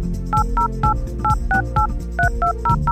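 Telephone touch-tone dialing: a quick, steady run of about a dozen short two-note beeps, each at a slightly different pitch, playing over a low, sustained musical backing with no talking.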